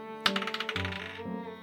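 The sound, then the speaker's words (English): A quick clatter of dice, rolled for an investigation check, tumbling across a hard tabletop, a sharp first hit followed by a rapid run of small clicks that settle after about a second, with soft steady music underneath. “Everybody give me an investigation check.”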